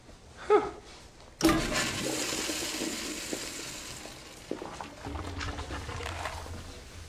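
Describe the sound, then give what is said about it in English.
A short click, then a toilet in a Guillermo del Toro film flushes with a sudden loud whoosh of rushing water that swirls steadily for several seconds before gradually settling and draining away. “Oh, no, a man washes his hands before or after tending to his needs.”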